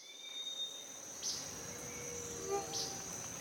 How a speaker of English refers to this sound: And now, time for a little NCVC. Today, we're going to a rainforest in Panama.